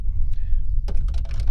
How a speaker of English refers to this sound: These dice have not been rolling well for me. That's a critical 20. Hey. They've not been rolling well for me. Critical 20. What kind of dice are those? Norse Foundry.